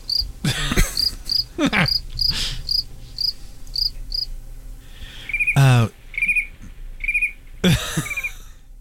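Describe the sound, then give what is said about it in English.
Crickets chirp in steady, evenly spaced pulses, broken by several loud, sweeping harmonic swoops that rise and fall before the rhythmic chirping returns, with a low hum underneath. A cricket recording played back at 5% of its speed. “That's a cricket sound at 5% the speed.”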